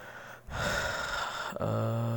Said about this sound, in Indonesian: Tar lo, tarik napas lo